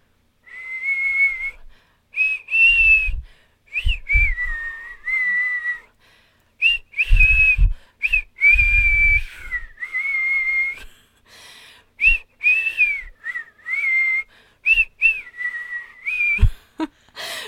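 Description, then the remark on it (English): A person whistles the melody of "House of the Rising Sun" for others to guess, for about seventeen seconds: a clear mid-high tone with sustained notes, small slides and brief breaths between phrases, plus a few low thumps. “I started whistling that,”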